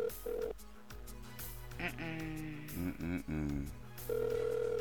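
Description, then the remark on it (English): An outgoing call rings through a phone line, with steady ringback tones near the start and again at the end, while music and faint voices play in the background between them. “Right now, we're getting to the on the phone line”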